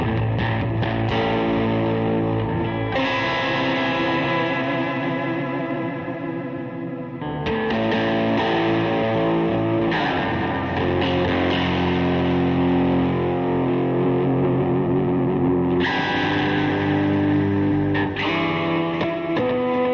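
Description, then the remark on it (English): An electric guitar, heard in stereo, plays continuously through effects, its tone thick with distortion and a shimmering chorus, chords ringing and sustaining loudly with echoing tails and no voices. “You guys can hear the guitar. The guitar's in stereo.”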